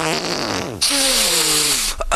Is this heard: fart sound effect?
yes